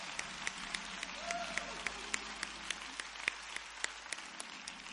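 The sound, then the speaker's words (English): A church audience applauds their pastor at a Valentine's Day week service, many hands clapping in a dense, even patter with a few sharper claps standing out. Moderately loud throughout, with no voices rising above the clapping. “Round of applause for our pastor.”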